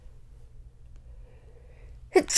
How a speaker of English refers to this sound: Oh my God. I barely ever sneeze on the podcast. First sneeze? I don't know. Oof. Allergies.